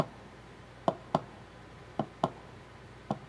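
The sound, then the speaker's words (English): Soft clicks from a small, hard dome actuator come in paired, heartbeat-like beats, three double-taps spaced about a second apart. Each is short and fairly quiet, with no voices. “But I think pretty much all of these, other than this little dome, this one barely makes any sound. I'll put it on here and you'll hear not much. It's like a heartbeat.”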